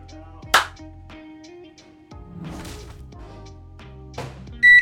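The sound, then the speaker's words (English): A studio microwave oven heating a Factor ready-to-eat meal hums steadily while a few sharp clunks and thuds break in, then a loud, high-pitched electronic beep sounds at the very end. No one speaks. “Let me just hit the studio microwave with one of these bad boys and show you what I'm talking about.”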